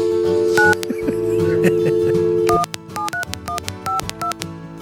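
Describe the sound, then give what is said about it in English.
A steady telephone dial tone hums for a couple of seconds, then stops as a quick string of about ten short touch-tone beeps follows, each a different pitch, punched in at an uneven pace. “To push the buttons in the right order.”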